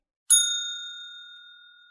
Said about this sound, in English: But I'm going to hit the bell because we're going to spoil this whole thing.